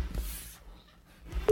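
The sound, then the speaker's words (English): A loud, steady electronic beep of an iPhone call hanging up cuts in right at the end, after a stretch of faint, low background noise with no talking. “I love that beep at the end of the That's how you know your iPhone hung up.”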